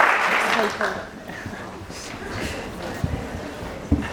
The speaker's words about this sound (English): So, can we please give a big round of applause for these fantastic speakers?